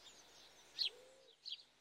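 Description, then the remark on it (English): A house sparrow gives two short, bright chirps about a second apart, fairly faint, over a soft background hiss with no voices. “The house sparrow is widely distributed and is especially associated with permanent human habitation.”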